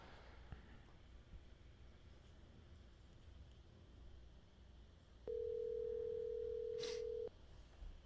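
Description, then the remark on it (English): A phone line rings once as a call is placed to bring a guest on the line: a loud, steady two-second ringback tone sounds over a quiet, faintly hissing background, with no one talking. “All right, should I give him a call? Give him a call. Let's get him on the line.”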